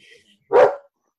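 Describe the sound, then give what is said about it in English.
A big female Belgian Malinois, a dog that looks like a German Shepherd, lets out one sharp, loud bark, a short burst in an otherwise quiet moment, with only a faint murmur of background sound just before it. “She's a big, scary dog. She is. Yeah. She's a Malinois.”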